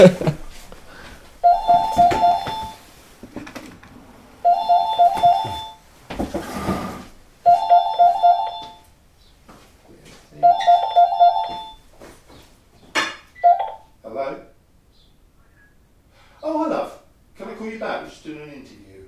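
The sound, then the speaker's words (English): A telephone rings four times in steady, evenly spaced bursts, clear, followed by people starting to talk once the ringing stops. “We always get the phone, don't we?”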